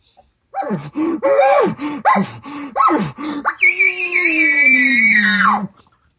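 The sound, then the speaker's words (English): A string of short, breathy panting huffs blown hard through an elk bugle call rises into a long, high, whistling bugle held for a couple of seconds before cutting off. It is loud, with no talking. “You start panting through the bugle. You're not glunking.”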